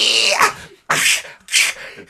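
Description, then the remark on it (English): A person imitates a cheetah's chuffing, the sound cheetahs make when in heat, with three breathy, puffing bursts, each a sharp onset fading out, spaced roughly half a second apart with short silences between. “Because cheetahs sound like this when they're in heat.”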